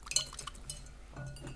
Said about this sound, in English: Sorry, I'm just washing the spoon a little bit because it's a bit Marmite.